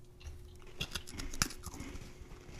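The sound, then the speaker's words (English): Quiet crunching on a multicolored freeze-dried fruit roll-up, a quick cluster of crisp, brittle crackles with one sharper snap, followed by softer chewing sounds. “It's so crunchy.”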